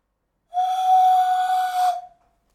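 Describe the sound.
A single sustained, steady whistled tone held for about one and a half seconds, loud, with a breathy hiss on top, imitating the blare of a conch shell horn.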